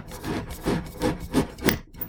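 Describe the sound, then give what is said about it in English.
A foil cutter scrapes around the top of a wine bottle in five or six quick, rhythmic raspy strokes, moderately loud, with no talking. “And we'll get that open with the foil cutter.”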